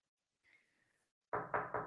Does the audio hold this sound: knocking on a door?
yes